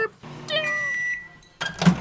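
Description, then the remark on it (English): A microwave oven running with a steady electronic tone and a beep, ending in a short louder burst of clattering noise. “Blend it. Microwave it.”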